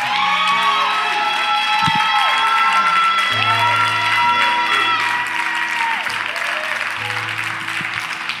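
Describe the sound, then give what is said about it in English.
A large audience claps and cheers loudly and continuously to thank God, with whoops and shouts rising over steady applause and sustained organ or keyboard chords underneath. “Wow, can you just clap your hands and thank God?”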